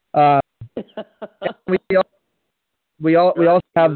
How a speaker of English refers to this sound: You're chopping a little bit. You're chopping a little bit there. Can you hear me now? Right, no, go ahead, try you're it. Still breaking up. Try it again. Go ahead, talk. Might be the internet.